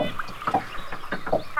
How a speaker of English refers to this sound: Oh, some birds. But is it next to water? A body of water?